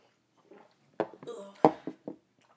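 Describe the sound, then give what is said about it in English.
Shot glasses clink together in a toast before drinking a creamy shot made with melon liqueur: a couple of sharp, bright taps, one leaving a brief high ringing tone, with a few soft knocks and murmurs around them. “All right, let's cheers the shot.”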